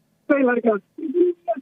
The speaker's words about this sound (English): You're coming in like you're talking into a pan and not to us.